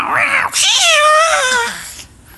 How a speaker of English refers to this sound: Oh, the cat.